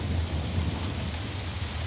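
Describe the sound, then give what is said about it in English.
Heavy rain pours steadily in a terrible storm at night, with a deep, continuous low rumble of rolling thunder underneath, a dense and even downpour that stays loud throughout with no voices. “The rain was descending in heavy torrents, the thunder was rolling in the heavens, and the lightning flashed athwart the sky.”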